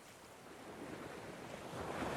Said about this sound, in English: From the shore of Baal Zephon, Moses stood facing the sea before him, listening to the soft crash of the waves and talking to his Lord.